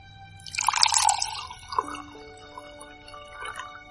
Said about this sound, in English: Is that Foley work? Was someone just really proud that they got that? Yeah, probably. I mean, how else are you going to get the sound right when she's pouring wine in a champagne glass and it's taking forever because it's just so tall?